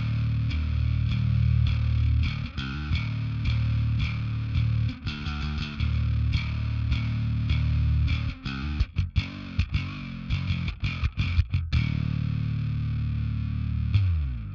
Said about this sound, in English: So I've also got, so it's a really nice thick distortion.